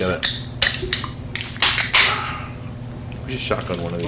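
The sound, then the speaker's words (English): Several Baja Blast soda cans crack open in quick succession, sharp metallic pops each followed by a brief fizzing hiss, fairly loud, with faint voices murmuring in the background. “Well, let's crack it open, guys.”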